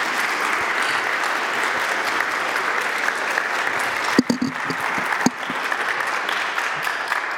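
An audience at a church service welcoming new members applauds in a dense, steady wash of clapping that holds at an even level throughout, with a few sharper claps and low thumps standing out partway through.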